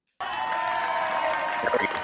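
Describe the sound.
A crowd cheer sound effect kicks in abruptly: a steady, loud roar of many voices shouting and whooping together, holding at full level for about two seconds.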